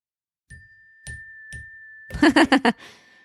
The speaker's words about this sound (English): A book bell, you guys. It's a book bell.